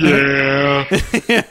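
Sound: goat bleating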